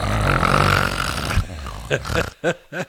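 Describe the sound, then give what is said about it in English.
A person imitates a man's loud snoring, which could be heard through a door four to five doors down the hall, with a few short, throaty rasping snorts in quick succession, following a stretch of dense, noisy background. “It wasn't until that moment that Javier realized that he snored.”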